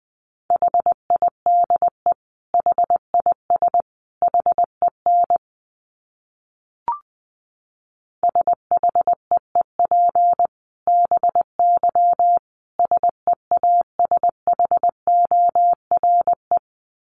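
Morse code sent at about 20 words per minute: a steady mid-pitched tone keyed in crisp dots and dashes, broken by a pause of a couple of seconds with a single soft click, then resuming.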